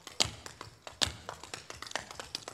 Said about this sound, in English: We do a little bit of tap.